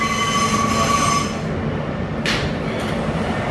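A Brooklyn-bound F local subway train, running via the E line between 50th Street and 42nd Street–Port Authority Bus Terminal, rumbles steadily along the tracks with a dense, loud low-end roar, a thin high metallic whine at first and a brief hiss of wheel or brake noise; no voices.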